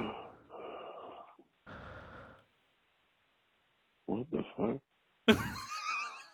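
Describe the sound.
Two heavy, close-up breaths rush right against the microphone, followed after a pause by a few short vocal grunts and a sudden burst of laughing or exclaiming voice.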